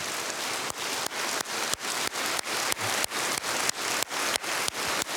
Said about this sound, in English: Let's applaud. Let's give thanks to Jesus Christ for his work in our midst.